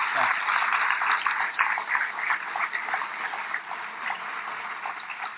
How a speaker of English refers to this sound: Please join me in giving them a warm round of applause for all of this.